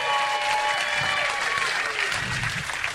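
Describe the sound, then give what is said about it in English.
A live audience claps and cheers loudly, a dense wash of applause with scattered whoops and whistles for a few seconds, no one speaking over it. “No, you don't have to cheer.”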